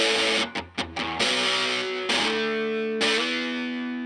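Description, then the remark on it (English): Heavily distorted electric guitar, played through a Rat distortion pedal, plays a few quick stabbed chords, then rings out in sustained, fuzzy chords with rich harmonic crunch, loud with no voices. “And I've got a rat pedal.”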